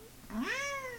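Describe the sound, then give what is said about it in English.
A single drawn-out cat meow, rising then gently falling in pitch with a bright harmonic tone, fairly clear against a quiet background. “You wouldn't like it, kitty. You want one with Neko girls, right?”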